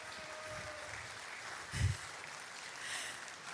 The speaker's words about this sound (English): I'm going to invite the families who are dedicating kids to come on up to the stage and join me. And as they come, would you just give them a big round of applause?